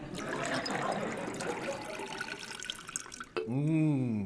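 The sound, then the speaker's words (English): Tepid water pours steadily into a glass for about three seconds, a rushing splash that stops abruptly before a voice starts speaking. “I will, however, indulge in a glass of tepid water.”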